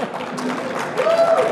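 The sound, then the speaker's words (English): An audience claps and whoops to vote for the movie scene option, a dense, noisy wash of applause with cheering rising over it and a brief high whoop near the end. “Clap and woo! All right, clap for movie scene.”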